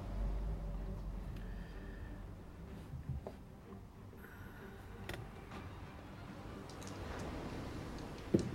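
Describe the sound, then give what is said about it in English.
Dice clatter in a few brief, scattered clicks against a steady low rumble of background noise, with a sharper rattle of dice near the end. No one speaks. “Oh, dice rolls.”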